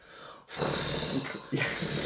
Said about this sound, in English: And cat with a purr of 80 decibels. Yeah, incredible. And I think a plane taking off is about 105 decibels. So this is 80 decibels. It's literally a roaring cat with a purr. So it's not cat, it's the lion. Yeah, it's a beastly purr.